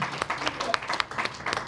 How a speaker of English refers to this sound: Hey, give them a round of applause.